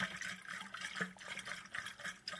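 Water pours steadily into a water bottle, a continuous rushing gurgle with a slight rhythmic pulsing as it fills, with no one speaking.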